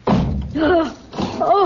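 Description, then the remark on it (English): A heavy door in an old house slams shut with a low, booming thud, followed by muffled voice-like sounds and a second rumbling burst as the door is locked. “He's locked us in down here.”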